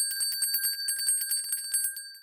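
A bright metallic bell rings rapidly and continuously, a quick string of clear, high strikes over sustained shimmering tones, moderately loud with no voices.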